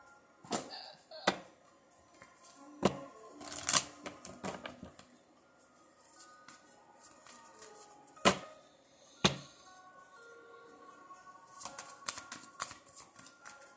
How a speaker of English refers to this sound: Actually, I was going to get a healing card is what I was shuffling, but I'm going to get an angel card.